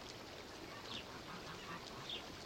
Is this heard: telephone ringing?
no